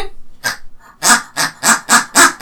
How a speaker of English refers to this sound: It's not even a duck, it's a chicken. I know, yeah, what does it quack for? Your toy makes no sense, mate.